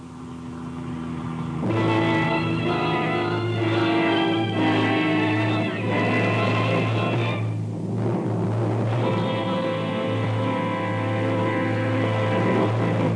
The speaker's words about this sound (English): Man, this is a fine car, ain't it? Listen to her purr.